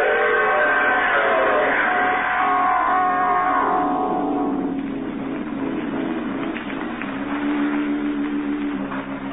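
A locomotive roars past, its loud, sustained whistle sliding down in pitch as it goes by, leaving a heavy rumbling clatter of the train that carries on to the end.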